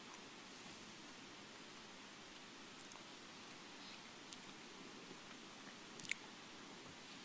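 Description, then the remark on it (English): Quiet chewing of communion bread, with soft irregular mouth clicks and squishes over a steady background hiss; no one speaks. “Let us partake of the bread.”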